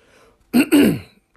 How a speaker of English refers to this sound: Clear my throat, man.